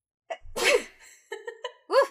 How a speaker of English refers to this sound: Hold on, I have to sneeze.